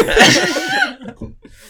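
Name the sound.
imitated sneeze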